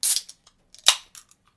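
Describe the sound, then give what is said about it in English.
The cap pops off a bottle of Snapdragon beer, 7% alcohol by volume: a brief metallic scrape, then one sharp, bright snap with a short ring, followed by a few light clicks. No one speaks. “All right, and my top?”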